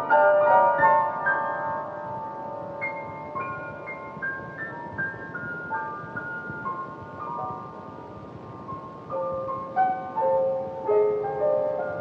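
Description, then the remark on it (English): An old audio tape recording of a woman playing a slow song she improvised on the piano, with single notes and soft chords ringing out and fading over a steady bed of recording hiss. No voices. “It's her at the piano, playing a song she improvised for John, pouring out her emotions about his life and death.”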